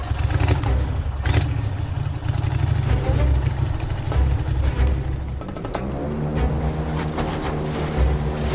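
A small speedboat's engine roars loudly and continuously as it chases another boat, its pitch shifting upward partway through as it revs, with rushing water and spray noise around it.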